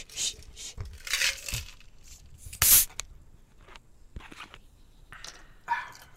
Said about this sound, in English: Should I do a slow one next time so you just hear it? Oh, do a slow little pour too into your microphone.